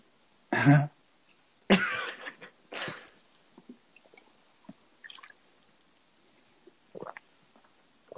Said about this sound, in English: Sorry. Gulping. I just have a drink.